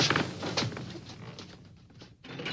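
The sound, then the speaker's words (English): A door is opened during a guided tour. It creaks open with a rough, grinding groan, broken by a few clunks and rattles, then fades briefly before a last scrape. No voices. “And now, ladies and gentlemen, if you will follow me, I have one more item of interest to show you. Through this door.”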